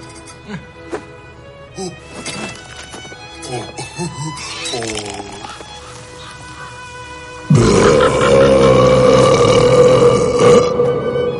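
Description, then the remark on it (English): A long, loud, wet burp rumbles on for several seconds after a stretch of lighter tonal sounds, gurgling and sustained. “Yeah, very wet burp.”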